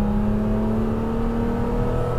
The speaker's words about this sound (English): I could listen to that engine all day long.